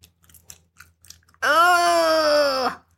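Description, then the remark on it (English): A voice imitates people chewing: a run of soft, wet chewing clicks and smacks, then a loud, drawn-out voiced slurping sound lasting over a second. “I do not like to listen to people chew.”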